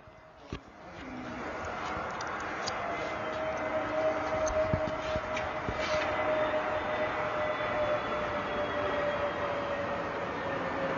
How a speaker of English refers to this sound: Let me play it again. Here comes the plane.